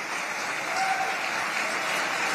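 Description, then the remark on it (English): Loud, sustained applause from a large crowd giving a standing ovation at the end of Mike Pence's speech announcing he is leaving his campaign, a dense steady wash of clapping that holds at full strength throughout without a break, with no speech over it. “Got a standing ovation there from the crowd at the end.”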